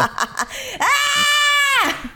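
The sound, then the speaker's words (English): Short vocal bursts lead into a loud, sustained high-pitched scream from two comedians that holds steady for about a second before dropping off, with no talking. “And we are here as your hosts of the only show on the internet with two queer Korean comedians screaming into the void.”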